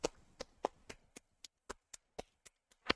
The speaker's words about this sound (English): The perfect clap.